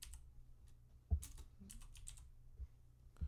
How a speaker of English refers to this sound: Insert angry key clicking.